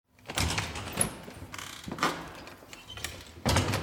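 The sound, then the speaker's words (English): A mechanical door grinds open with a steady whirring rumble, punctuated by several louder clunks and rattles along the way, with no voices. “Okay, the door should open now”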